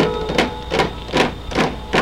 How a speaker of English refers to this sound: Oh, great. I must have tripped an alarm or something.